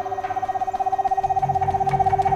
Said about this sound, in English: He was so focused on his task, he did not notice the bright, yellow eyes watching from a nearby grove, the eyes of a screech owl.